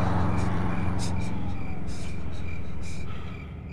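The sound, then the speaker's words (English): Three federal vehicles speed down Route 17 with lights and sirens blaring, roaring past, a thin wailing tone sliding downward in pitch over the dense rumble of engines and road noise before the sound drops off near the end. “A split second after the Aston came to a stop, 3 federal vehicles sped down Route 17, their lights and sirens blaring.”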